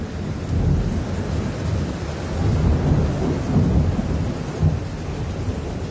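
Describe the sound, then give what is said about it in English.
A dramatic summer thunderstorm in Johannesburg, with deep rolling thunder rumbling continuously beneath steady rain, swelling in waves over several seconds with no voices. “This is a city of dramatic summer thunderstorms.”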